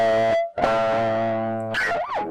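Distorted electric guitar notes ring out loudly, then a high, squealing pinch harmonic, made by striking the note with a pick while lightly touching the string with the thumb, that swoops up and back down in pitch. No one speaks.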